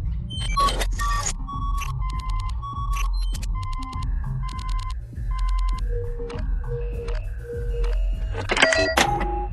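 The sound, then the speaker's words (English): A door code lock is cracked open: a run of rapid mechanical clicks and rattles mixed with short electronic tones over a steady low hum, ending in a burst of louder clicking as it releases. “One door unlocked.”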